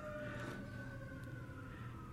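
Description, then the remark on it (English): A passing police car siren sounds loud, its steady tonal wail holding for a couple of seconds over low rumbling traffic noise, with no one talking. “The cops are coming.”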